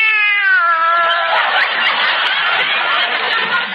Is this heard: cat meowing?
yes